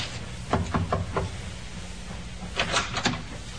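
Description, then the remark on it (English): A ship's captain raps on a wooden cabin door in two bursts of about four quick knocks, with a short pause between. The knocks are fairly crisp, with no voices. “Captain knocked.”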